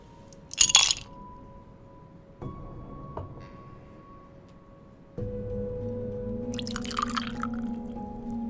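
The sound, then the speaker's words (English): A sharp clink of ice against glass, followed by a steady stream of spirit poured over the ice, rising in tone as the glass fills, with a few more faint clinks near the end. “Would you like that poured over ice?”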